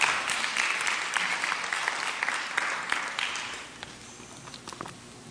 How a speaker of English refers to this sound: You clap your hands right there.